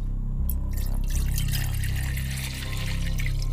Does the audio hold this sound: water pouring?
yes